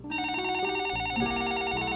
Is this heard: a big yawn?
no